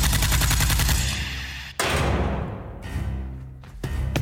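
A rifle fires a rapid, steady burst of shots until its magazine is emptied, followed by a couple of heavier booming blasts with a rumbling echo trailing between them. Loud throughout, with no voices.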